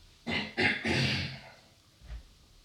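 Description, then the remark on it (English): Someone clears their throat in three quick, harsh bursts, followed by a short pause and a faint low grunt near the end. “I got to clear my throat.”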